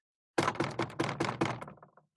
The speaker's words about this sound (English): I'm just gonna go knock on the door, see if I can finally get some candy.